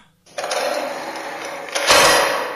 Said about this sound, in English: Sounds like the a big elevator lift. Starts moving down. I don't think a lift is in keeping with this kind of world, really.